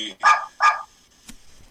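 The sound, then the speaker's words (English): A dog gives two loud, sharp barks in quick succession, followed by a brief faint knock and quiet. “So we've got John's dog, Dan's echo.”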